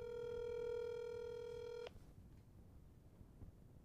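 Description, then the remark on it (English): A phone call dialing out over a speakerphone: one steady, buzzy ringing tone holds for about two seconds, then cuts off abruptly, leaving only a low background hum with no talking. “Right, I'm going to call him live on speaker. Just give him a call.”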